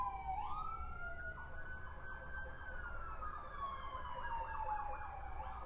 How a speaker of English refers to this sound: Hope where the sirens are going, hope that people will be okay. This is the second set of sirens within the same day.